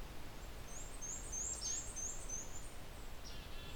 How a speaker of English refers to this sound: Black-capped chickadee behind me.